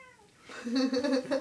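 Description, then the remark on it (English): Daisy, a pet cat, lets out a drawn-out, wavering meow, rising in strength after a quiet start and holding for about a second. “Daisy agrees as well. Our cat thinks so as well.”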